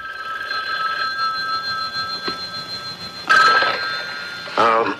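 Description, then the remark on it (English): A telephone bell rings steadily as a wake-up call, in a bright, sustained tone throughout, joined near the end by two short bursts of a woman's low-register voice cutting in over the ringing. “giving David Janssen's private eye a wake-up call with her low-register phone voice”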